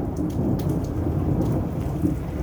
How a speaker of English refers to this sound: And yeah. And after that, I heard the thunder.